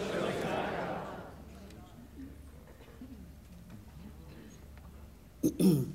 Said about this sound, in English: Healed of the cough and healed of the phlegm and congestion in Jesus' name.